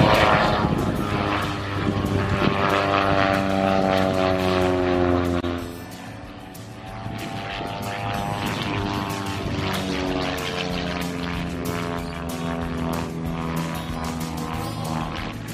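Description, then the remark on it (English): A propeller aircraft drones loudly overhead at a drive-in air show at the Shuttleworth Collection in 2020, its engine note wavering and bending in pitch as it passes, easing briefly before the steady buzzing hum builds again. “Welcome, everyone, to the Shuttleworth Drive-In Air Show.”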